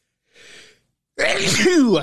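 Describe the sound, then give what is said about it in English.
A brief, quiet sharp inhale followed by a man's loud, explosive sneeze with a voiced, drawn-out tail, heard on its own without any talking. “Yowza, what a sneeze.”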